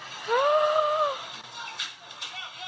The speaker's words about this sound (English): Oh my God almighty. I'm getting chills just listening. Listen to the screams. Oh my God. Is that not horrifying?